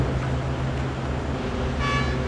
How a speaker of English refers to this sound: a giant shovel loads earth and ore, about 300 tons in total, onto the back of his vehicle. At any given time, about 100 haul trucks operate in the mine. We're listening to the horn for the shovel. He's going to honk us out when we're fully loaded.